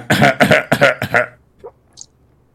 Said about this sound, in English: …'s coughing up blood.